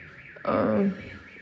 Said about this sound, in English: There is a beep of the door.